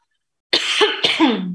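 A loud cough from a person with lingering post-COVID symptoms bursts out after a short silence, followed quickly by a second harsh, raspy cough with a throaty tail. No speech accompanies it.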